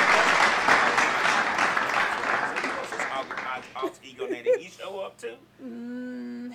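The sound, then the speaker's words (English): A burst of dense, steady applause with many hands clapping, lasting a few seconds before thinning out. Brief wavering vocal sounds follow, ending on a sustained hum. “I can't do nothing but applaud.”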